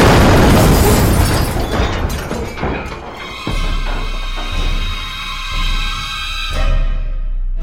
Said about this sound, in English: Get ready for... missile! Missile! Brace for impact! Brace for impact now!